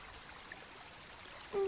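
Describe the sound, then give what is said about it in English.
Soft, steady trickle of stream water babbling gently and continuously at low volume, with a brief louder humming tone cutting in right at the end. “They both stared down at the water.”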